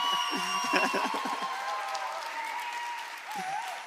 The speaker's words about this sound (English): So I want you to just together, let's thank God and, you know, praise God for their obedience and their lives, and let's pray that God strengthens them. So right now you can give your round of applause to the Lord for them.